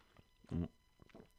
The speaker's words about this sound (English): Yeah, sipping some, ranch water, hard seltzer right now.